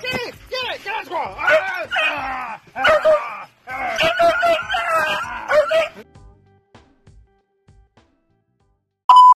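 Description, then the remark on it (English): A dog named Darla barks at squirrels, yipping excitedly in rapid bursts with whiny, howling tones for about six seconds, then falls quiet before a short electronic beep. “And now, Darla barking at squirrels.”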